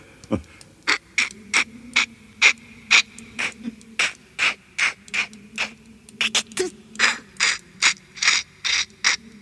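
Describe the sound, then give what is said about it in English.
A voice imitates a throat-slashing noise as a long run of harsh, raspy hissing bursts, about twenty in steady rapid rhythm, over a faint low voiced hum. “But what is even better than the throat slashing symbol is the throat slashing noise.”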